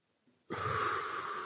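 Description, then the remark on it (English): A single long, loud inhale, a deep breath taken for a breathing exercise without lifting the shoulders, begins abruptly after a brief quiet moment and continues steadily to the end, a broad airy rush of breath drawn in. “Look, I'm going to breathe without lifting my shoulders.”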